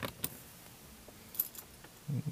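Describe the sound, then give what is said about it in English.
Car keys jangle in a few short, bright metallic bursts, fairly quiet, followed by a brief low clunk near the end as the keys are turned in the car's ignition. No one speaks. “Hold on, I gotta turn the keys because I gotta fucking roll this window down.”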